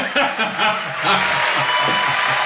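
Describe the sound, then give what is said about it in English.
A brief burst of applause, steady and dense for a couple of seconds, with a few voices faintly mixed into the clapping. “You got an applause.”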